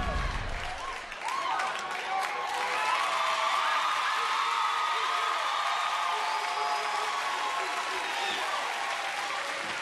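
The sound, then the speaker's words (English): A crowd bursts into sustained applause and cheering for a DJ, with whoops and shouts rising over steady clapping that stays loud and dense for about ten seconds. “Yo, give my man a round of applause.”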